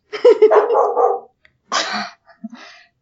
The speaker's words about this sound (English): my dog's freaking out. I apologize.